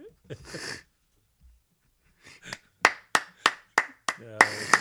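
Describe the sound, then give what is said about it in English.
One person claps about seven times in a steady, fairly quick rhythm, applauding themselves, each clap sharp and crisp. A voice is heard briefly before the clapping starts and again as it ends. “I'm giving myself applause for that.”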